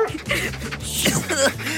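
A St. Bernard named Pickles whimpers and yips, a quick run of high, wavering whines and short yelps over a low steady hum.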